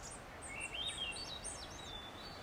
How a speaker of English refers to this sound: That bird I described, the siren-sounding creature, I learn later on the PCT is called a varied thrush. They, along with the veery, were my constant companions in the North Cascades of Washington.